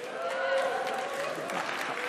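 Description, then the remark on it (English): An audience claps in a steady, dense patter for a couple of seconds, the applause fairly loud and even, with a faint murmur of crowd voices blended underneath. “I don't know if they're clapping because the Steelers got beat or because they like the Steelers.”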